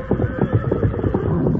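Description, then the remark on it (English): A horse whinnies loudly, a quavering, pulsing neigh that carries on through the whole short moment with no one speaking, as the horses Silver and Victor are reunited. “They whinnied and nuzzled each other for some time, while Lund and Carney watched with amusement.”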